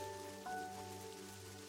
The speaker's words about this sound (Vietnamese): Chắc là chúng đã bị cơn mưa đánh thức.